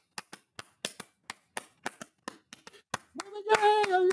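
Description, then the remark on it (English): About a dozen sharp, crisp hand claps from teenagers on the street at 2 o'clock in the morning land in a steady, slightly syncopated rhythm, then a voice comes in singing a sustained, wavering note as the clapping continues underneath. “You know, just singing their heads off, all clapping, you know, for about 20 minutes.”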